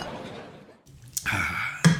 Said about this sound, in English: All right, man. One last drink. Give me a cheers